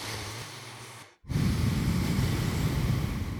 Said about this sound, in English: I can finally breathe through my nose like a normal human being. Listen to this.